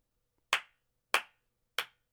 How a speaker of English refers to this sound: Just a solemn clap for Paul. He knows. You know, somewhere right now, Paul's filming something, and he has just, in the scene, paused because he could hear the clap from all the way in the past.